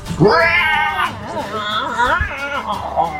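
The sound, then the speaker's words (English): A human voice imitates a creature screeching in pain: a loud, strained, wavering high-pitched wail that rises sharply, sustains, then warbles and bends in pitch for about three seconds. “Screeches in pain.”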